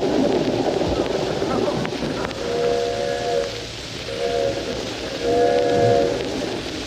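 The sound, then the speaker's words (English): The 20th Century passenger train, nearing New York, rumbles along with a steady, hissing roar, and its steam whistle sounds three fairly loud, mournful blasts, the last longest, over the continuous running noise. “Jack Benny hasn't arrived yet, but we have finally located him on the 20th Century train, nearing New York.”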